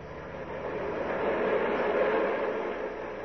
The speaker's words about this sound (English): Worst part of going to Coney Island, the ride home and the subway.